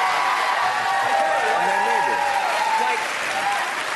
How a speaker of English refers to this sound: Everyone can feel good about themselves and clap,